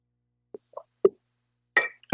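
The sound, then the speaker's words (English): Someone sips ginger tea: a few soft mouth plops and wet clicks, then two short, breathy slurps as the drink is taken in. No talking. “Excuse me, just let me have a sip of my ginger tea.”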